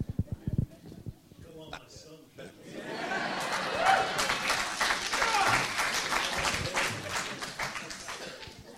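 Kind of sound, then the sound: crowd, audience applause and cheering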